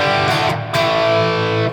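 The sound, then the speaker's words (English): A crunchy, overdriven electric guitar played through an amp on its crunch channel for soloing rings out in sustained chords, with several sharp pick attacks refreshing the gritty, harmonically rich tone, loud with no talking. “So I'm using this amp, but I'm on a crunch channel.”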